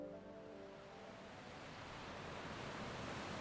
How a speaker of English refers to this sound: When their bags were full, they laid a picnic rug on the sand and sat side by side, watching as the waves beyond advanced and retreated gently.